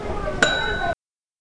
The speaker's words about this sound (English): See how they got quiet on that ding of the bell?